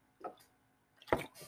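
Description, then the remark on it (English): A couple of soft, wet slurping sips of water, a faint one followed by a louder, fuller gulp, with quiet pauses and no talking. “Need to take a sip here.”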